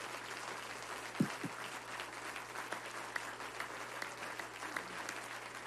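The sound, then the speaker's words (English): A crowd applauds award recipients steadily for several seconds. Many hands clap at once in a dense, even patter, with a couple of soft low thumps early on and a faint hum underneath. “Now, would you give all of these recipients another round of applause?”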